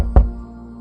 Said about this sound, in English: Before I could go any further with this thought, a knock at my door broke the silence of my meditation.